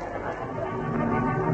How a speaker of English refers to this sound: There was a discordant hum of human voices.